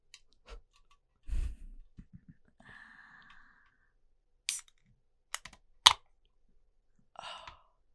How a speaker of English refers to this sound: I'm feeling a little parched. Let me crack open my little can. Okay, your can open. Yeah, I gotta get it open. My little nails.